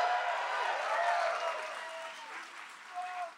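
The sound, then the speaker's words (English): A live crowd at the Palladium Times Square in New York City applauds labor, a union venue during the WGA strike, with dense, steady clapping and a few cheering voices rising above it, the wash of sound holding for several seconds before tapering slightly. “By the way, while we're applauding labor, Palladium Times Square is a union venue.”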